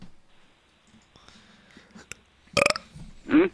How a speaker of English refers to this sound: I burped. It felt good.